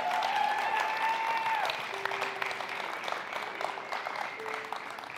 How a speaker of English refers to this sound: Y'all keep clapping. He's not up here yet. Like, he's gonna mosey.